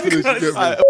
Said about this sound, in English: Don't delete that, bro. Just beep it. Just do bare beeps.